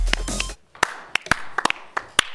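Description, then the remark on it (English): Loud, sharp hand claps ring out one at a time at an uneven pace, about seven or eight sharp smacks, after a brief burst of crowd noise. “a bit rich when you haven't even had a chance to prove yourself yet, but you put your money where your mouth was, and you clapped hard.”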